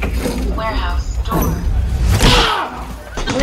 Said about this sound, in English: Warehouse door. Did it get you a little bit?